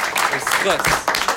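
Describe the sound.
A steady wash of clapping from a crowd lasts throughout, dense and fairly loud, with voices talking and calling out over it.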